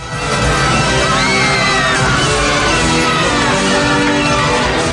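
crowd cheering wildly

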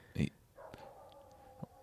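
dog barking nearby

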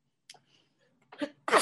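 sneeze

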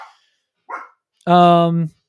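two dogs barking

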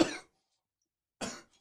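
coughing and throat clearing

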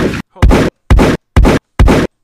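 gunshot sound effects

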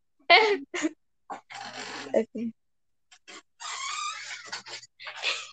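dog noise

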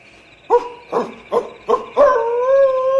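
wolf howling

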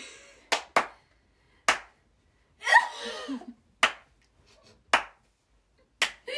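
hand clapping

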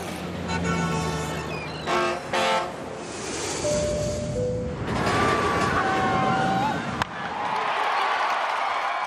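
montage of car

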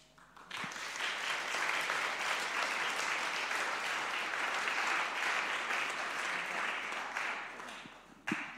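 audience applause

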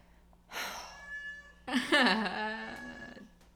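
cat meowing

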